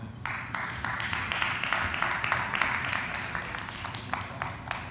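A live audience applauds steadily for about five seconds, a dense wash of many hands clapping at an even, moderate loudness with no voices heard.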